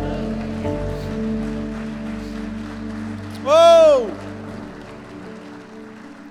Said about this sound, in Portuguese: Se você crê nisso, dê um glória a Deus e aplauda ao Senhor. Adore.